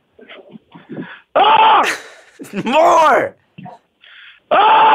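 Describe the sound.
A person lets out several loud, sustained screams in bursts, with a few short spoken sounds between them.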